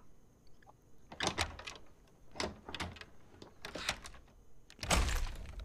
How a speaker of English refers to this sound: Man, that sounded real crusty when opening. That was a crusty door.